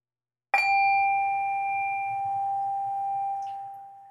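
A single meditation bell is struck once to begin a 10-minute sitting meditation, ringing out loud and clear with a bright, steady tone that sustains and slowly fades, accompanied by a faint low hum.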